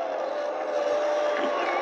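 crowd booing

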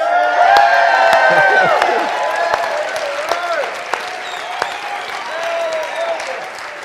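crowd cheering and applauding

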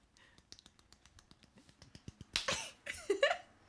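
hand clap

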